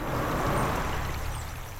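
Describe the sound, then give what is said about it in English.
A steady, gentle rush of calm creek water flowing in Middle Creek, just east of Lacine in Linn County, Kansas, continuous and even, with a soft low rumble underneath and no voices. “The creek is calm now, but was swollen with rainwater that May.”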